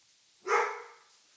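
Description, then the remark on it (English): A single bark from the speaker's own dog, sharp at the onset and then fading out over about half a second, heard alone against a quiet background. “As my dog starts barking.”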